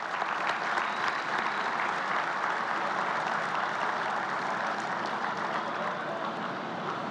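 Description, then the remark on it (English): Sustained applause from a crowd for the Lanier family at a Cardinals tribute to Max Lanier, a dense, steady clatter of many hands clapping at an even loudness for several seconds with no voices standing out. “Another round of applause for the Lanier family.”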